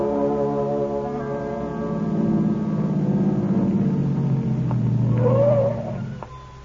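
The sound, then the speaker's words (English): A car engine drones steadily on a rough road, its low rumbling hum swelling louder midway, with a brief rising whine before the sound drops off near the end. No one speaks. “Turn into it. Yeah, it's a bumpy road.”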